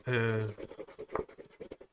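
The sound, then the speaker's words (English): A brief voiced sound, then rapid scratching strokes, like a coin rubbed over a scratch card in a quick irregular rhythm, moderately loud, as a scratch card game to match two identical dice is scratched. “Let's scratch it.”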